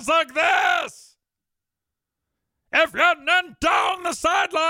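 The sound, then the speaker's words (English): A man's voice mimics an excited football announcer, letting out a loud, drawn-out bellowing yell for about a second. A pause follows, then he resumes talking in animated, emphatic bursts. “It's because whenever he gets excited,”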